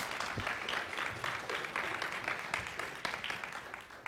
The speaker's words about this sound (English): You can go ahead and cheer for them and smile. Pretend that you're happy for them to be here.